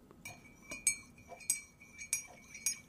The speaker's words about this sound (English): Let me pour you a cup of Earl Grey so that we can remember the revolution or foment one.